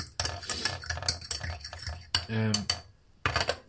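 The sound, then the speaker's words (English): A teapot and cup clink together as already-brewed tea is poured out, a run of irregular light ceramic knocks and taps with a brief ringing tone partway through, then a short pause before a few more clinks. “I'm one of those people that uses a teapot because, are you ready for this?”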